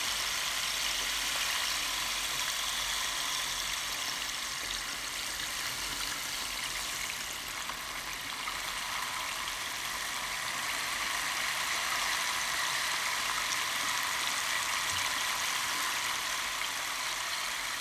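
Bamboo rain sticks pour out a dense, steady rushing patter, like falling rain or water, holding an even, fairly strong level throughout with a slight dip midway and no voices.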